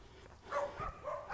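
Dogs barking back and forth at each other, a few short, fairly faint barks following one another in quick succession, with no talking.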